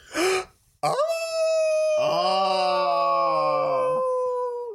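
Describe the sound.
A person imitates a wolf howl in a howling contest: after a short breathy burst, the voice swoops up into one long, steady, loud wailing note and holds it for several seconds before trailing off.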